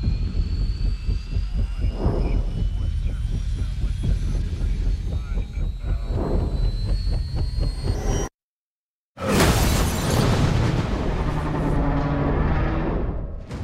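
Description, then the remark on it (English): Loud helicopter noise in a movie trailer: a steady engine roar with rhythmic rotor thumping. It cuts to a second of silence, then a dense, rumbling surge of aircraft sound bursts back in. “See, one of the helicopters crashed on this mysterious island that a team of scientists and army guys are going to check out.”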